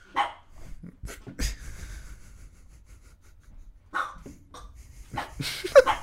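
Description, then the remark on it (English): A female dog barks in a few sharp, separated bursts after hearing someone, with quieter panting and rustling in the gaps between barks and no one talking. “She's just doing her job. Is there somebody walking? She heard someone”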